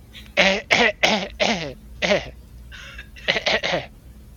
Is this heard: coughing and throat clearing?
yes